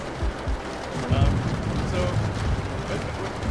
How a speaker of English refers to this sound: it's really ripping here, by the way. If you're watching this online, it is really windy.